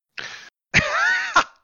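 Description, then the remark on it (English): A short breathy rasp, then a harsh cough that stretches into a strained, wavering voiced sound and ends with a second sharp cough burst. No talking. “I'm trying not to make you cough anymore than you already are.”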